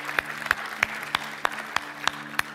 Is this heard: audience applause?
yes